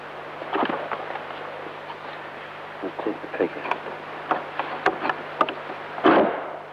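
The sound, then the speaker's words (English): The metal bolt of the curtained chancel door at Borley Church is slid back in a run of short, uneven clicks and scraping knocks, ending in a louder rasp, over a low steady hum. No squeak is heard. “Now, can you try sliding that bolt back to see what sound it makes?”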